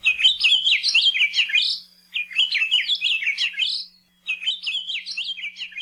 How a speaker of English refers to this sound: This rare honeycreeper lives on Hawaii Island, and we've got its song for you today.